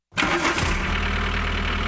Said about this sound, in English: And what is that, by the way? What jalopy did they pull that sound from? I was going to say, we were talking about electric cars. Sounds like a diesel. Yeah, it does. Sounds like a crank car Model T or something.